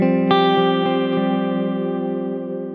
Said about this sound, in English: I think it's called modulated reverb, which is like a little bit of a chorusy thing. And I've got a tape delay.